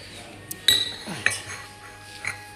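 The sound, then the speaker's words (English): Teacups and cutlery clinking as people sip tea: four or five sharp, bright chinks at uneven intervals, a couple ringing briefly with a high metallic tone, over a quiet background with no talking. “Whilst we're sipping our teas.”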